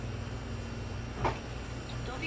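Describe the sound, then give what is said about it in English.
A single short thud of a man closing a door, fairly soft and brief, rising out of a steady low background hum midway through. “He closes the door, bam. He just closes the door.”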